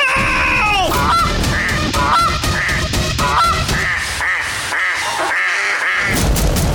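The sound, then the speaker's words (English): A loud, busy chorus of geese and ducks honking and quacking over one another in rapid, repeated calls, continuous throughout. “At the quack of dawn. I think we're finally safe, everyone. Oh my god, they found us!”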